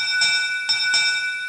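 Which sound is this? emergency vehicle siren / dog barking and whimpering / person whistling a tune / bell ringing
bell ringing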